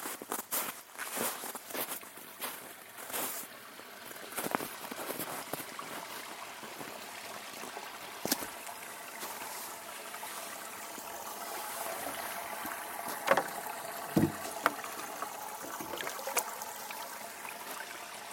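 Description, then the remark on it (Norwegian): Footsteps crunch along beside a steadily trickling stream on a cabin trip, followed by a few splashes and clinks as water is fetched from the stream. No one speaks. “Det man må gjøre når man på hyttetur å hente vann fra bekk.”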